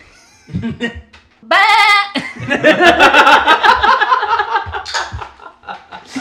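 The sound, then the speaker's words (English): A person loudly imitates a goat with a shaky, wavering bleat, immediately followed by several seconds of rhythmic laughter from people. “Okay, I need you to give me a goat, and everyone else be quiet.”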